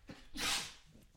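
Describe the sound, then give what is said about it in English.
A single sharp sneeze bursts out, a quick intake followed by a loud, hissy explosive release that fades within a second. “I'm gonna sneeze.”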